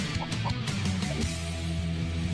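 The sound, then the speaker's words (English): A few harsh, honking bird calls ring out in quick succession over a steady hum of background noise, then fade into a continuous droning tone. No one speaks. “Is there an eagle outside?”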